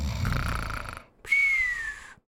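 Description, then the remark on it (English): A single exaggerated snore, likely voiced by a person, as a character falls asleep mid-sentence: a rough, rattling inhale for about a second, a brief pause, then a high, thin whistling exhale that slides gently downward in pitch. “He falls asleep again mid-sentence and meows.”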